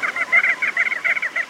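A crested auklet gives a rapid series of nasal, honking calls in quick bursts, fairly loud, with brief gaps between groups and no voices.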